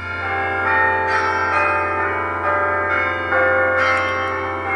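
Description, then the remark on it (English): An iPod alarm tone called Bell tower plays through the iPod's internal speaker: bells ring out in a continuous, overlapping peal, with fresh strikes every second or so layering over the lingering hum. No voices are heard. “Bell tower. Bell tower. Selected.”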